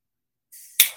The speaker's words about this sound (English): So rather than butane fumes, a piezo lighter, also called torch lighters.